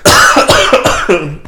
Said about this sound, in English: You can cough.